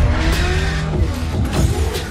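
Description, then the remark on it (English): A Mercedes car's engine roars loudly and steadily while its tires squeal in drawn-out, high-pitched screeches, with no one speaking. “Look at this car, that Mercedes.”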